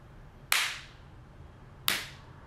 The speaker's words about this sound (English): three devices recording. Are you ready? I'm going to clap. Are you ready for the clap? I'm ready for the clap.